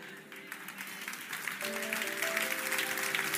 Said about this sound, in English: Come on, while you're in a clapping spirit, let me give you this one.